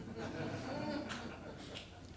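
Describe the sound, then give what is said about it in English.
Someone blows their nose into a handkerchief, a loud, breathy honking rush lasting a couple of seconds with a few sharper bursts near the end, and no talking. “I'm going to blow my nose now.”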